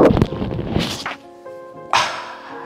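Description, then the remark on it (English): A barbell clinks three times during speed bench reps: sharp metallic knocks, each followed by a bright, lingering ring. The last clink is clearer and stands alone, with no talking. “So if you heard that little clink, clink, clink at the end, that's the sound you want to hear when you're doing a speed bench or even a warm-up.”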